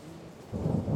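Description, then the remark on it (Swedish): A loud, deep thunderclap bursts directly overhead about halfway through, together with lightning, and rolls on with heavy low rumbling, over a steady hiss of rain. No one speaks. “Efter vad som kändes som flera timmar av generalrepetition synkroniserades åskan och blixtarna i ett klimax precis ovanför våra huvuden.”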